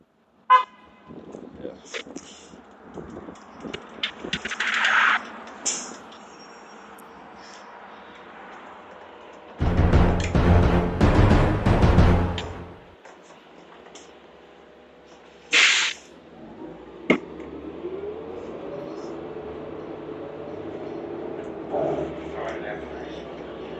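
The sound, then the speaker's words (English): A city bus rumbles up and stops to pick up a passenger, with a short horn toot, a loud hissing burst of air as the doors open, then the engine whining and idling. “So I'm It's here now. The bus is here.”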